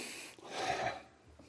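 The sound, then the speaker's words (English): A single sharp sniff through the nose, fairly loud, a short breathy rush of air lasting about half a second with no talking around it. “I'm sniffing, but I never put another one to my mouth.”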